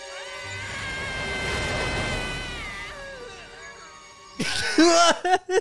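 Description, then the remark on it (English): A man driving a car makes strange, wavering vocal noises, drawn-out moans and yowling, cat-like sounds, then breaks into several loud, sharp screams near the end, unaccompanied by speech. “I also just want to play the clip of him driving because he's screaming and then makes a collection of noises that are really odd. And it sounds like a cat and then he's moaning.”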